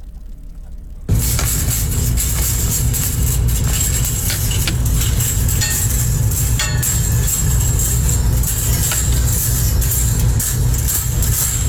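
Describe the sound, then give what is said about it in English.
Coat hangers shaken steadily, a dense, continuous metallic rattling and jangling that starts abruptly after a brief pause and holds at a loud, even level with bright clinking overtones and no talking. “That was the coat hangers.”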